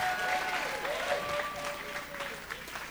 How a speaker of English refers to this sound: And give Jesus a clap offering and a shout.